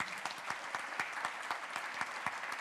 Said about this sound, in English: Thank you for holding up the arms of this church as we engage in mission. Would you clap for them, please?